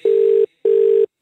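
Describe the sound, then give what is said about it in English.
A telephone ringing tone heard down the line: two steady, low electronic burrs in a quick double-ring pattern, clear and fairly loud, with no talking. “It's ringing.”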